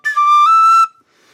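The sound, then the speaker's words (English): A penny whistle plays two short, clear notes in quick succession as a finger is lifted off a hole, the second note stepping slightly higher. Both are fairly loud, then stop abruptly into near silence. “So yeah, you're just lifting a finger off of the, I'm not good at this, I'm telling you.”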